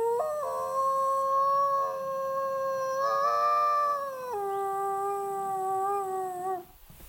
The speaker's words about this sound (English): we hear a series of yips, and we turn around, and there are three Mexican gray wolves, maybe 50 yards from where we were standing.